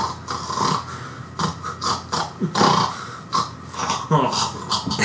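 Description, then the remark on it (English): A voice imitates someone choking on their own spit: a run of wet, sputtering gurgles and raspy snorts in uneven bursts, fairly loud and continuous for several seconds. “So sounds like he's joking on his own spit.”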